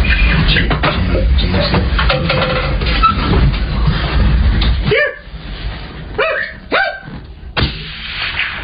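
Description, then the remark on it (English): A steady, rough noise fills the first five seconds, then about four short, sharp deer calls ring out, each a brief bark-like bleat with a quick rise and fall in pitch. “Listen to the deer call. Yeah, the deer call is great.”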